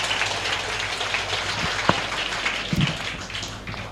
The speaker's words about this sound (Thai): ขอเสียงปรบมือให้พี่ทั้งสองท่านด้วยครับขอบคุณมากครับ